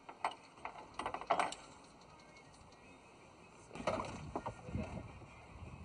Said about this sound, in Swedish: Och jag tog en tur med dem på deras flytande bilbåt, båtbil. Ja.